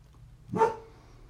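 A single dog bark from the speaker's dog Noah rings out briefly in the background, short and moderately loud, followed by quiet with no one talking.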